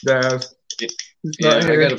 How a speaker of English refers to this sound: is using a typewriter to be on the show tonight. It sounds like it.